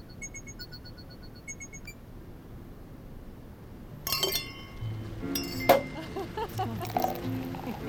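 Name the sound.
alarm going off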